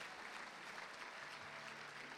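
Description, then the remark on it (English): An audience claps hands together in sustained, dense applause as a clap offering to God in Jesus' name, a steady wash of overlapping claps at an even, fairly loud level. “Come on, give God a clap offering in Jesus' name.”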